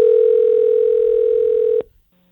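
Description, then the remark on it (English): A steady, loud telephone dial tone holds for nearly two seconds before a call to a scrapyard, then cuts off, followed by a short pause and a brief click or beep. “Let's call the scrapyard and get the truth here from somebody working there.”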